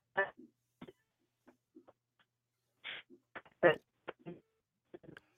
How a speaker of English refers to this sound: you're cutting in and out. How many bars do you have on your cell phone there? Let me just see if I can get a better reception.